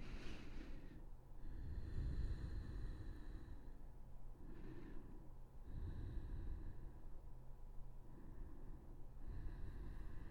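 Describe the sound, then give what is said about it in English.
Deep, slow breathing, long airy inhales and exhales repeating in an unhurried rhythm, taken while holding a yoga stretch of the right hamstring, with no talking over it. “We're going to take about 5 massive breaths here. So just hold here and breathe.”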